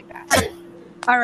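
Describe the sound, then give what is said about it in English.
A single quick, sharp sneeze bursts out, a brief explosive puff amid casual talk, with voices speaking before and after it. “Did you sneeze?”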